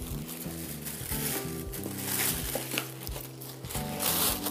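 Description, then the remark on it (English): Pretty polka dot wrapping paper crinkles and rustles in a steady, busy stream of crackles for several seconds, with soft music playing underneath. “Okay, and then we go with the pretty polka dot paper.”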